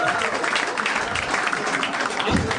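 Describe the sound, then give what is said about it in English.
A crowd claps steadily, a dense patter of many hands that stays fairly loud and even for a couple of seconds, with no voices rising above it. “Ladies and gentlemen, can I get a round of applause, please?”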